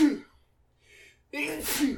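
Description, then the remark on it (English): A sharp sneeze bursts out after a short breathy inhale, loud and forceful with a broad hissy spray of noise, preceded by a brief voiced sound. “Bless you.”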